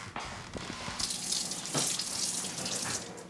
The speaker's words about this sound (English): All right, and I just touched this, so now I'm going to wash my hands again. See, I'm telling you, you got to wash your hands all day long.